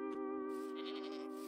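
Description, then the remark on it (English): A video game goat on a mountain lets out one long, nasal bleat that wavers and pulses toward the end, loud with no talking over it. “I found a cow and then immediately got distracted by the goats I saw on the mountain.”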